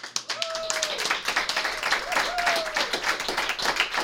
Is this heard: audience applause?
yes